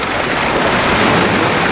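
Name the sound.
water rushing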